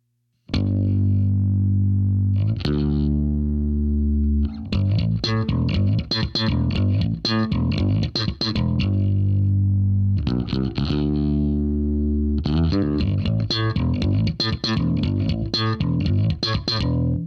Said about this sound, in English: with some longer notes leading back into the slap pattern. Here's the first chorus.